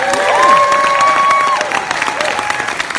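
A cinema audience at a concert film screening claps and cheers loudly and steadily, dense rapid clapping mixed with shouts and a long, high sustained whistle that fades as the applause carries on.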